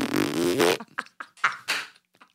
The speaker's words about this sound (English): Are you farting?